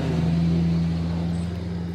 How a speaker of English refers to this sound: before we let this loud diesel truck go past us before we answer that.